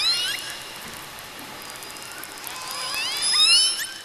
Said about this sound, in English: Toothed whales have whistles.